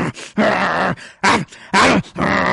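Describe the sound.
A person imitates a dog, making four loud growling and snarling bursts with short gaps between them, like snapping bites.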